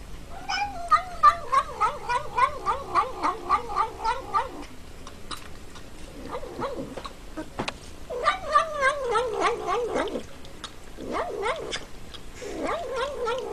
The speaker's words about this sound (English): So there is in fact reports of a cat that says num num num num num num num when it eats spoonfuls of sour cream.